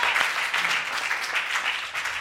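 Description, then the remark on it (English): A crowd claps steadily for Jesus, a dense, even patter of many hands that fills the whole moment without a break or any voices standing out. “Clap for Jesus.”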